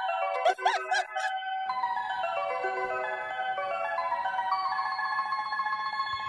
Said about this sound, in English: And when those bells go diddle-diddle-diddle at the end, That's Yamanote. that's the Yamanote state, yeah, line, and Love it. including Shibuya Station.